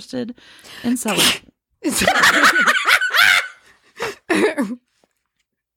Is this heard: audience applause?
no